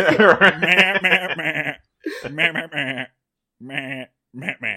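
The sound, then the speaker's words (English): A voice imitates a goat's bleating in a string of wavering, nasal bleats, loud, with short pauses between the bursts. “Starting from this letter, from the goat.”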